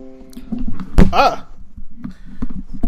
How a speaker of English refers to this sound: I just knocked over my microphone.